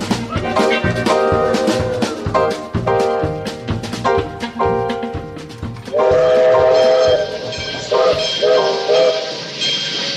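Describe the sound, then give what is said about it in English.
A train rolls along the rails with a steady, rhythmic clickety-clack of wheels over the joints, loud, while a sustained horn sounds out in bursts near the end. “Goodbyes to this here train, Banjo, and I'll say hellos to where we are, which is Chocolate Holler if its welcome sign ain't a liar.”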